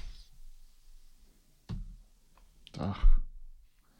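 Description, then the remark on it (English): Dice rattle and clatter across a hard surface, rolled for an athletics check in a tabletop game and landing on 14: one sharp knock, then a denser burst of tumbling clicks that settles quickly. No one speaks. “The dice are not hot today.”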